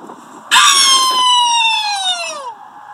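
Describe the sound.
People howling in one loud, sustained, siren-like wail lasting about two seconds, its pitch sliding slowly downward before fading out, with faint background noise and no speech.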